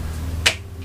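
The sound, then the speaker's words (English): A single sharp hand slap cracks once in the middle, brief, over a low steady background hum with no talking. “the slap.”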